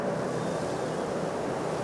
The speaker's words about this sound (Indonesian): Angin terasa kencang.